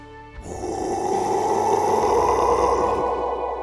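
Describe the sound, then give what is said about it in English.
A single loud, guttural roar from a half-human, half-beast creature in a large metal cage bursts in after a brief pause, a rough, rasping growl sustained for about two and a half seconds before it cuts off. No one speaks. “Its eyes glowed red in the dim red light, and it let out a blood-curdling roar.”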